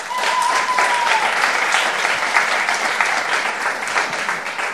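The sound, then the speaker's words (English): An audience claps in answer to a show-of-hands question, those already working as producers clapping, a dense, continuous patter of many hands at even loudness throughout. A brief thin whistle tone rises out of it near the start. “Tell me, if you're in the room and you are already a producer and you have a podcast, you know, working on some element of a podcast now, clap your hands.”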